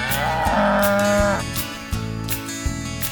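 A cow lets out a loud, drawn-out moo, its rich tone fading into a lower rumbling hum with a couple of soft thumps. No one speaks.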